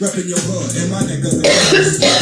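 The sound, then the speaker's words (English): A harsh, throaty cough with some throat clearing, fairly loud, followed by a burst of broad noisy rasp; no clear words are spoken. “Cough.”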